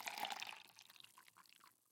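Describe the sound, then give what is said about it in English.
Coffee pours briefly into a cup, a soft splashing trickle that starts strongest and thins into a few light drips before fading out. No voices. “Coffee and a spoonful of ice cream.”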